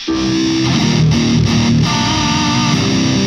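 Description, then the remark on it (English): Heavily distorted electric guitar played through stacked pedals, a Crook and a Moxie, with the gain turned down a little, with a thin, nasal, honky tone, playing a few sustained notes and chords in a steady phrase, loud and saturated with a constant fizzy hiss underneath. “And it just sounds too nasally now. It almost sounds like the Moxie needs to be after the Crook.”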